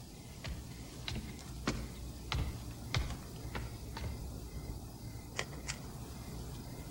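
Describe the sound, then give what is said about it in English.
Foley footsteps in a film scene as Charles Grodin's character goes to check the basement: a string of crisp, clicky taps at an uneven walking pace over a steady low hum, then a sharp click of a light switching on. No one speaks. “Like the footsteps and the light turning on.”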